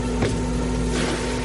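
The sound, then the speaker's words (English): A lobster boat's engine on Penobscot Bay, Maine, drones steadily, a constant low hum with a faint tonal whine, with brief splashes or bumps and no voices. “But to his crewmate on this lobster boat,”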